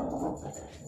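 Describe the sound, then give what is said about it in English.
A dog whimpers briefly, a short, soft whining sound with no one talking. “it's one of my dogs.”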